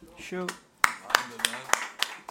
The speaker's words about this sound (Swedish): Nej, men det det är jätteviktigt med applåder. Det är jätteviktigt.